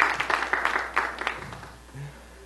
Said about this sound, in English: Let's give him, you know, hand clap. My brother is here.